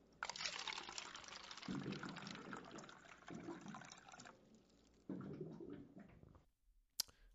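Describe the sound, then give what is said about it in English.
A water cooler gurgles and splashes as it fills, with several bubbling glugs rising over a steady rush of pouring water, then a sharp click as it stops. “Now, you know when you hear that sound, it's about high time for your water cooler fact.”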